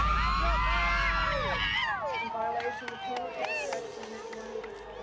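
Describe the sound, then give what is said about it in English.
A large crowd erupts in wild cheering at the guilty verdict in the Scott Peterson trial in California, a dense roar of overlapping high-pitched shouts and whoops that stays loud for a couple of seconds, then thins into scattered yells and claps. “And the crowd absolutely went crazy.”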